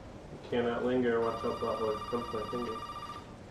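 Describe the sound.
A landline telephone rings with a steady, bright electronic tone that starts partway in and continues to the end, while a voice talks loudly over it in the foreground.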